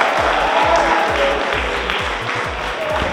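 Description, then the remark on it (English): A Year 9 school group applauds itself loudly and steadily for a few seconds after its performance in a show, dense clapping with regular low thumps pulsing underneath like stamping feet or a beat. “Give yourselves a clap, that was stunning.”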